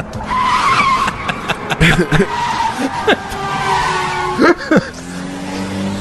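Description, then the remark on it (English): A taxi's tires skid and squeal loudly for several seconds as it pulls over to the side, pitch sliding up and down over a steady engine rumble, with a few sharp thumps and a voice briefly speaking alongside. “How fast this guy pulls over and gets out of the fucking car.”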